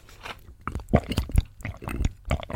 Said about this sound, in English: Oh, it makes me want to punch you. I'm sorry. Eating sounds.